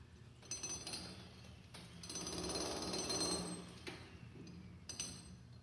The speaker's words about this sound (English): That looks pretty fun. Get a jackhammer, get on a concrete roof, and start chipping away, right?